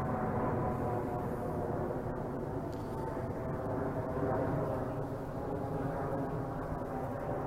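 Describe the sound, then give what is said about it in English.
A steady, broad low roar of an Emirates passenger jet plane passing overhead, fairly loud and continuous throughout with no talking, rumbling heavily in the low end. “I think there's a plane going over now. Hang on, let's just let that pass.”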